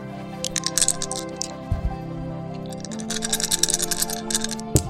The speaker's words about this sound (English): Hang on, I just got to roll some dice.